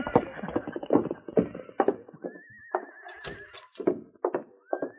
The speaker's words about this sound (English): Sergeant Preston mounted his horse, Blackie, and with King rode to the constable's office.